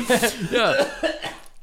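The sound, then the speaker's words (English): A few short, throaty coughs burst out in quick succession with some voiced, throat-clearing sounds mixed in, ending abruptly. “That was a cough.”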